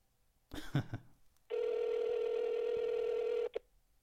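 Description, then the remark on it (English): A quick cluster of phone dialing beeps as a call is placed to a friend, then a steady, buzzy ringback tone that holds for about two seconds before cutting off, clear, with no voices. “It's ringing a lot.”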